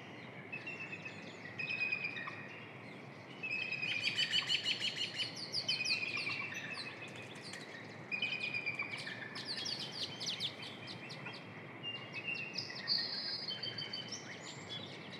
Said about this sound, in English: Here comes the bald eagle. Maybe it'll fly over top of us.